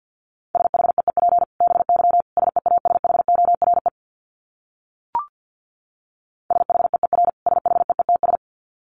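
Rapid Morse code sent as a steady mid-pitched tone keyed on and off in quick dits and dahs at about 50 words per minute, with a brief click and pause midway before the keying resumes.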